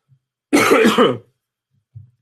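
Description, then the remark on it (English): A single harsh bout of coughing and throat clearing, a lingering cough after COVID-19, lasting under a second, rough and raspy, followed by silence and a faint short grunt. “COVID cough.”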